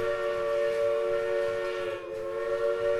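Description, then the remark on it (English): A sustained train whistle blows steadily for several seconds, a loud chord-like tone with a brief dip near the end, with no one speaking. “For instance, there are trains.”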